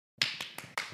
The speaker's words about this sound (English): Clyde's looking at me like you clapping for me. No. Come here, Clyde. I mean, yes, for you too, but that's not what it was for.